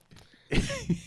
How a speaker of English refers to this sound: Why are you breathing so goddamn heavy?